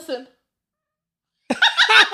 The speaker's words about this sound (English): tapped the cat on the forehead and she went, burr.